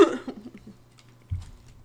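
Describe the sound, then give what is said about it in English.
A person coughs, a sharp, rough burst that trails off, followed about a second later by a second, lower and muffled cough. “As I'm the only coughing yet.”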